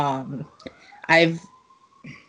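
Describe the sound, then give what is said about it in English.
A fire engine siren from a fire station about a block away wails steadily, a thin sustained tone sliding gently in pitch beneath a person talking. “Sorry if you could hear that siren. I live about a block away from a fire station.”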